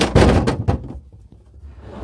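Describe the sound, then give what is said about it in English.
A refrigerator door thuds shut after an orange is put inside, in a quick cluster of heavy, muffled bumps, followed by faint rattling clicks and a low, soft hiss as things settle. “Hold on, orange is going into the refrigerator.”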